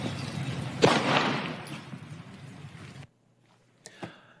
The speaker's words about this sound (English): I think the next clip is where he gets shot. The officer's stun camera stops to work, but there are plenty of other cameras, and we see the shooting.